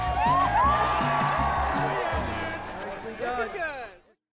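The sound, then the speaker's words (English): A lively outdoor crowd at a pond skimming event, where people try to skim across a frosty pond, cheers and whoops to celebrate the end of the year, many voices overlapping into a loud, continuous roar with rising shouts on top, fading out abruptly after about four seconds. “But really, it's about just that like crowd enthusiasm, everybody celebrating the end of a great year.”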